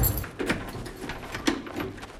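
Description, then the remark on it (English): Metallic clinks and rattles of keys, followed by a couple of sharp clunks like a lock turning and a door being worked open, otherwise quiet. “We gotta open these doors up.”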